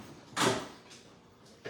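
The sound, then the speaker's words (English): A heavy, garage-like door slides with one loud, broad rumbling scrape, followed by a few fainter knocks and rattles as it settles. No voices. “Yeah, changing this door sounds like it belongs in a garage.”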